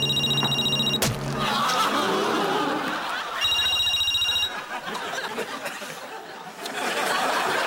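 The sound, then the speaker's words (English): Larry Duff's new mobile phone, set to an extra loud bleep, rings loudly in two shrill, electronic bursts, each about a second long, with a noisy stretch of muffled chuckling and rustle between and after them. “I'll try and reach Larry on his mobile. He's got a new one with an extra loud bleep.”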